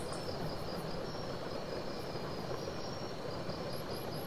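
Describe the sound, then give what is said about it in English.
Rain hitting a tent that is not waterproof in a steady, dense patter that never lets up, with a thin, high insect trill running faintly through it. No one speaks. “Okay, this rain is driving me mad. If you're gonna hit the tent, you might as well just land on my head.”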